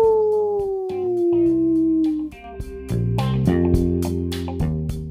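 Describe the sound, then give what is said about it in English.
A long, drawn-out wolf howl slides slowly downward over a thumping beat, then gives way to loud music with steady drum hits for the rest of the few seconds. “Let's put the sheep to sleep and we let the wolf pack ride. Ow!”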